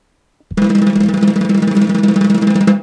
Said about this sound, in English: Drum roll, please, sir, for our new sponsors.